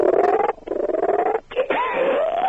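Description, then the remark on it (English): A man's voice imitates a frog throwing up a wedding band, for a Paramount movie with Nicole Kidman and Sandra Bullock. It is a run of warbling, croaking gurgles with a pulsing buzz and rising, retching-like glides, broken by two short pauses, loud and with no other talk. “can you do the sound of a frog throwing up a wedding band?”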